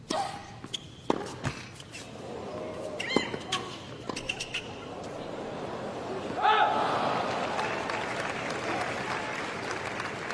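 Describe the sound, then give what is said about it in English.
Sharp tennis ball impacts ring out in quiet during a tennis match, then spectators let out a high squealing cry mimicking a player's squealing, swelling into sustained crowd noise and laughter. “you're going to hear the people in the crowd start imitating Sabalenka with her squealing”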